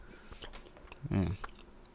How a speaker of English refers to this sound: I'm trying to, like, not chew on the mic, but I'm going to chew on this mic, man.